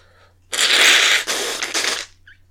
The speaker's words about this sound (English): And hold on a second while I blow my nose.